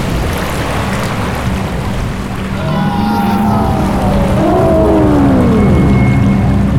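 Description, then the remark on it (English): A loud, steady rush of surging water, like a flood wave pouring in, builds slightly over several seconds while eerie, whale-like tonal calls sweep over it. No one speaks. “Water poured from the glass like a tidal wave.”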